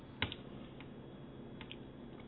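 A few scattered computer keyboard clicks, one sharp, the rest faint and sparse, over a low steady background hum with no talking.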